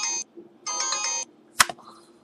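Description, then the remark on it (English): A phone gives a short electronic tone, then a longer one, a low-battery shutdown chime as its battery dies, followed by a sharp click. Fairly loud, with no talking. “And my phone just died.”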